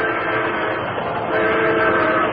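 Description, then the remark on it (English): The horn of a fast-approaching train blares loudly and continuously for a couple of seconds, its layered tones steady with a slight swell midway, rushing in, with no voices. “The headlight of a fast-approaching train revealed the Lone Ranger working desperately to cut the rope that held his Indian friend Tonto to the gleaming rails.”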